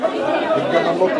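Dense, overlapping chatter of a crowd of patients clamoring to see a doctor in a hospital waiting room in Gaza, many voices talking at once in a steady loud clamor with no single speaker standing out.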